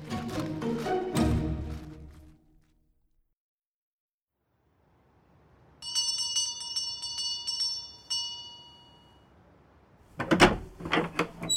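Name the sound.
doorbell ringing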